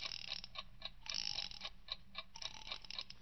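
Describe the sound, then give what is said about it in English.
An alarm clock ticks steadily, with a brief burst of denser ratcheting clicks partway through as the clock is wound up. No one speaks. “First, set the alarm. When she gets back from shopping around 2:30, you better set it for 3 o'clock. Good. Now then, wind it up.”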